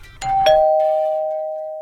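A doorbell chimes a clear two-note ding-dong, the second, lower tone ringing on and slowly fading. Close and fairly loud, with no voices.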